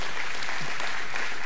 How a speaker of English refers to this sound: If you know God's got a purpose for your life, give Him a hand clap of praise this morning.